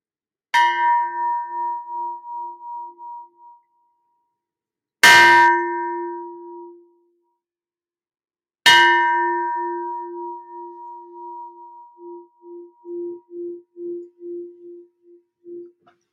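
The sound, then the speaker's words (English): A bell is struck three times in the morning to clear energy, each strike ringing out loudly and decaying slowly with a pulsing, wavering hum. The strikes come several seconds apart, with no talking. “It's my favorite bell, just saying.”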